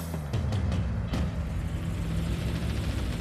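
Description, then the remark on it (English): A box truck's large engine rumbles steadily, with a few brief hissing bursts near the start that could be air brakes releasing. No one speaks. “Putting him in a box truck.”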